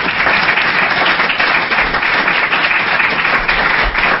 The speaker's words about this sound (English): So please help me to say thank you to our panel by giving them another heartfelt round of applause. Thank you.